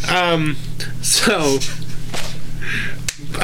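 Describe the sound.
A single sharp, crisp open-hand slap to the face cracks out close by near the end, preceded by voices yelling and exclaiming.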